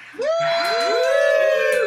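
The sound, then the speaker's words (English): A live audience at a roast show at the Dutch Hall lets out sustained, drawn-out boos mixed with whoops, several voices overlapping in a loud, continuous wave that starts abruptly and holds steady, with little sign of clapping. “I love how now people are booing when they have to give us applause.”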